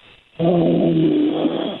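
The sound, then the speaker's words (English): A man, a caller who has been on hold for nearly 90 minutes, snores: a single long, rumbling snore rises abruptly after a brief quiet moment and drones steadily for over a second, loud, with no one talking. “What's happening right now? He's snoring.”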